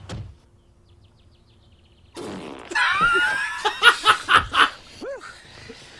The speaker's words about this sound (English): Blind double date fart commercial.